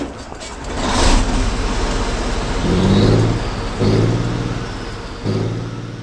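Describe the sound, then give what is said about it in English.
The engine of a 57-ton M60 battle tank, started with its push button, roars continuously with a loud, gritty rumble as the tank lurches forward, revving in three separate surges of deep droning tone toward the end. No one speaks. “Closing the hatch and pushing the start button, the 57-ton M60 battle tank roared to life and lurched forward.”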